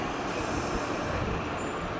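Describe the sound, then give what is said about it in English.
A loud hiss of air brakes from a passing bus, steady for about two seconds over a low engine rumble, with no voices, as several buses go past. “Look at all the buses go past.”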